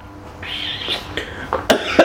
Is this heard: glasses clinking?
no